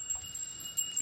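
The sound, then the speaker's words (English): A small bell rings faintly throughout, its thin, high metallic tones sustained and shimmering steadily over the short moment, with no voices present. “See, I don't know if I like this bell anymore because he's just keeping it closer to him.”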